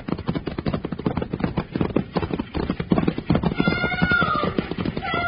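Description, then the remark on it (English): A runaway stagecoach team of horses with no driver gallops hard, their hooves pounding in a fast, continuous drumming rhythm; a brief high, drawn-out cry rises over the hoofbeats near the end. “We've got to stop those horses.”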